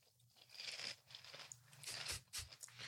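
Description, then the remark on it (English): Someone crunches on Cheetos, a snack not from Dollar Tree, with a steady run of irregular, crackly bites and chewing for about three seconds and no talking. “eating a snack that isn't even part of the Dollar Tree snack review”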